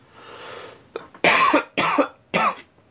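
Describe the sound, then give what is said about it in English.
A quick series of loud, harsh coughs from a person with a frog in the throat: a couple of short catches followed by three forceful barks with brief pauses between them, no talking. “Jesus Christ, I'm coughing here.”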